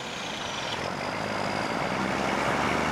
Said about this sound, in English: Standing next to the highway, it's no wonder that people's health are affected from having to put up with this cacophony day in and day out. The levels of ambient noise pollution are just completely out of control